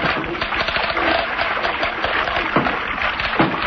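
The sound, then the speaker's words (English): A small boat sloshes through water and is run up alongside an old piling by a forested shore and tied up, with steady splashing and a couple of dull wooden bumps near the end. There are no voices. “Run the boat up alongside that old piling and tie her up”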